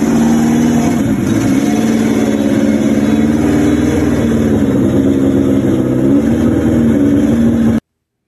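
A vintage race car engine idles steadily as the car is pulled into a truck, a loud, low, throbbing rumble with slight rises in pitch, running continuously for about eight seconds before cutting off abruptly.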